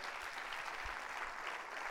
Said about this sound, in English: Clap your hands. That's good stuff.